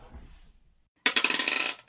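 A die clatters and tumbles across a hard surface in a quick run of sharp, bright ticks that settle after under a second. Before it, only a low murmur.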